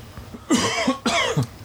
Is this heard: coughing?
yes